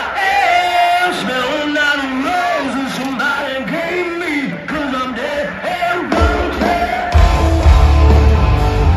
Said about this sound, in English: That sounded great. Cell phone audio is not always the best. The crowd was huge. So this was Saturday night for their kickoff.